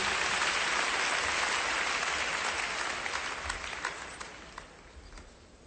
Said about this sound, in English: If you'll clap your hands one more time as you're seated.